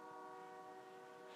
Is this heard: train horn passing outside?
yes